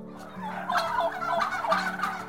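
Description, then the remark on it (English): Wild turkeys calling in a rapid, rattling gobble, a burst of warbling, throaty notes repeated in quick waves over about two seconds, fairly loud with no voices. “And turkeys can do more than just gobble.”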